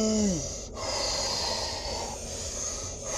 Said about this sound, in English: I can't fucking breathe all this time smoking.